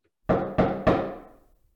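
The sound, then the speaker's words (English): Three firm knocks on Zero's wooden door in quick succession, loud, each with a short resonant decay; no voices. “So after a few hours, I'm going to go knock on Zero's door.”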